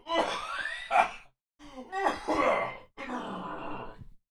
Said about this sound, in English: Still chewing on a bit of a cough, so to speak.